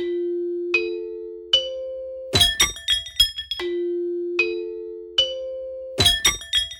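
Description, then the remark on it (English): Chimes ring in a repeating pattern on The Dinner Party Show: a low sustained tone stepping upward with each strike, then a bright, jangling flurry of clinking chimes. The sequence plays twice, with no talking. “And there was lots of chimes there. We got extra chimes.”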